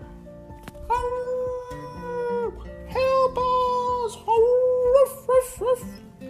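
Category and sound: animal, dogs howling and whimpering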